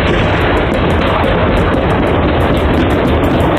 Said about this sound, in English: A surveillance camera from a home in the area captured the sound of the gunshots ringing out.